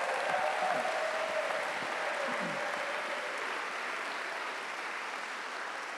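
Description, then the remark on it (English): A church audience breaks into steady, dense applause for the events team, many hands clapping together in a continuous wash of sound that holds at an even level for the whole stretch, with no one speaking over it. “Let's give those folks that made this possible a big round of applause.”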